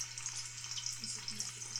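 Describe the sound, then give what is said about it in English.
Steady, crackling sizzle of chicken frying in a cast iron skillet, a dense hiss of popping oil with tiny bursts throughout, continuous and fairly loud, with a low steady hum underneath and no voices. “Let's get this chicken started.”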